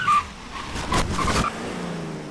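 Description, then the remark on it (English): A truck roars with a brief high tire squeal and bursts of engine noise as it speeds backward, rolling over a woman on the pavement, then settles into a steady rumble. No one speaks. “the truck speeds back in reverse, rolling over her and crushing her head.”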